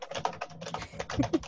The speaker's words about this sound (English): I'm in a coffin, hearing only the sounds of the world's loudest keyboard.